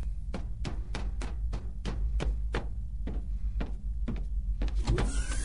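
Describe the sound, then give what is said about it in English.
An unlocked door slides open with a steady run of sharp, evenly spaced mechanical clicks over a low, constant motor hum, fairly loud. “Think the door is unlocked? It is. I tried it.”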